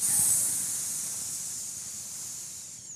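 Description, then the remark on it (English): A snake's long, steady, loud hiss, holding for about three seconds with a sharp airy sizzle before easing off slightly at the end. No voices or other sounds. “God made the snake.”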